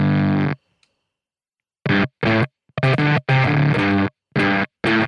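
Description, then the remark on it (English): Harsh, buzzing distortion tones from an electric guitar played through a gated distortion pedal, chopped into loud bursts by the pedal's noise gate that cuts each one off abruptly, leaving sudden silences between seven uneven blasts. “Listen to that gate.”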